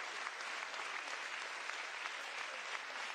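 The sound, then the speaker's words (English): A standing audience claps to give God love in a time of thanksgiving: a dense, even wash of many hands with no pauses, holding a constant level throughout. No one speaks over it. “Come on, don't let him give him a little pretty clap.”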